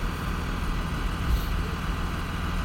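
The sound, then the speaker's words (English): A large school bus diesel engine idles steadily as people get on the bus, a continuous low rumble with an even, unchanging level throughout and no voices. “And they're getting on the bus.”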